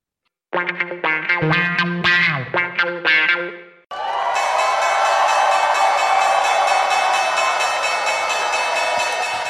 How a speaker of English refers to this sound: You know what that sound means? Someone gets to ring the opening bell at the New York Stock Exchange. Well, yesterday, if you've been watching, it was Birkenstock.